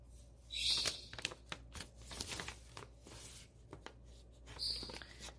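Soft crinkling and rustling of an old paper letter dated June 14, 1946, being handled, with a few sharper crackles as the sheet is shifted and unfolded; no one speaks.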